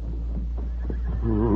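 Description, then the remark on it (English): A few soft thuds and shuffles, then a horse that has been roped with a lariat and brought to a stop lets out a loud, wavering whinny near the end, with no one speaking. “Quickly, the Lone Ranger crawled through the fence, and in a moment had roped the horse with his lariat and brought him to a stop.”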